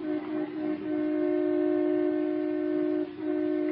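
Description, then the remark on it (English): A car horn blares in a long, steady, insistent blast, its brassy tone held for several seconds with only brief breaks, loud and unbroken by any voices, sounded by a driver trying to get his car out of a driveway blocked by another car. “Oh, let him honk, the big goose.”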